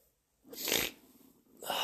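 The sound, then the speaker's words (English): Two loud, airy bursts of heavy breathing into the microphone, a long exhale followed by a pause and a second rush of breath, with no talking. “If I could stop breathing like an idiot.”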